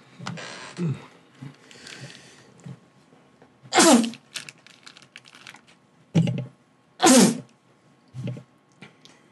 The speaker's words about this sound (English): What was that? He sneezed twice. Like, certain people sneeze differently. No, but that after the sneeze was weird. You seen that?